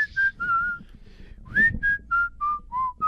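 A person whistles a short tune of clear notes in a steady rhythm, each pitch held briefly before sliding to the next, with a faint background hum and no talking.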